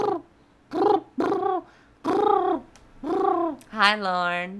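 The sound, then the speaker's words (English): A person imitates a cooing pigeon with five or so throaty, rising-and-falling hoots in a steady rhythm, fairly loud, ending in a wavering, warbly coo. “Do you want to hear my pigeon impersonation?”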